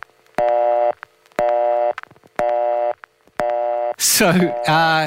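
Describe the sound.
A telephone busy signal beeps four times in a steady on-off rhythm, clear, on a new phone line being tried after switching phones, before a voice starts talking over the line at the end.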